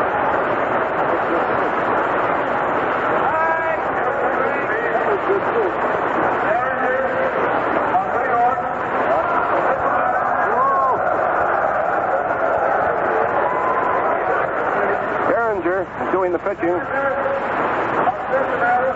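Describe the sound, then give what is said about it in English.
A baseball stadium crowd in Cleveland gives the announcer a Bronx cheer after he mistakenly says pitcher Paul Derringer is from New York: a broad, steady roar of jeering voices runs the whole way through, with a man talking over it. “The crowd gave the announcer a bit of a Bronx cheer when he inadvertently said that the pitcher was from New York, Paul Derringer, but it's all in fun, and he corrects himself and says that he's from Cincinnati.”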